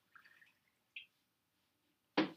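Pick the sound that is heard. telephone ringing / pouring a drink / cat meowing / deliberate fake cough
pouring a drink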